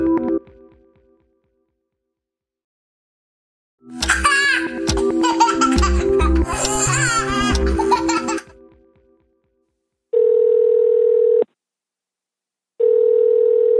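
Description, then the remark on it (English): A burst of lively laughter, then a telephone line ringing as a call is placed back to a caller: two long, steady electronic ring tones separated by a pause of silence, clear. “In a bit, I'm going to call back Ben”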